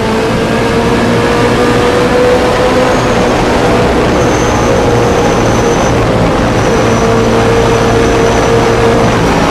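A loud, steady race car engine roars continuously as the car comes out of a big turn, turn 9, onto the straight, its droning pitch climbing gradually as it accelerates, with no voices present.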